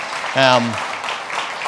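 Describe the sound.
A crowd claps steadily in a dense, crackling wash of applause, with one short, loud voiced cheer rising above it early on before the clapping carries on alone.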